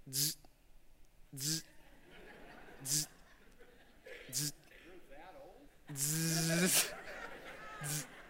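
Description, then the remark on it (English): Someone vocally imitates a fax machine transmitting a sheet of paper after a phone number is dialled, making a series of short hissy, buzzing bursts followed by one longer, louder screeching burst and a final brief squeal. “I put it in a machine like this. It's a fax machine.”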